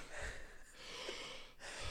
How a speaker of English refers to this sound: Do you hear it? Your heavy breathing? Yeah.